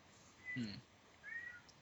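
A cat meows twice in quick succession, a short rising-falling mew followed by a thinner, higher one, both fairly quiet against a soft background.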